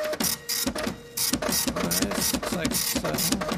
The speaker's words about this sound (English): We print this out and go back to the printer and hit print.